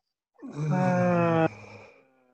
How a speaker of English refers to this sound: Hey, you're making me laugh at your yawn. What are you doing with your yawn?